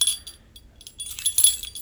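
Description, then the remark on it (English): Someone fiddles with a set of keys that jangle and clink in short, uneven bursts, with a brief lull in the middle before the bright metallic rattling picks up again. No one speaks. “Yeah, stop messing with my keys.”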